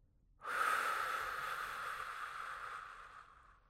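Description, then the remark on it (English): A long, slow, extended breath out during slow, deep breathing, starting abruptly as a breathy rush and fading gently over about three seconds, with no talking. “Slow extended breath out.”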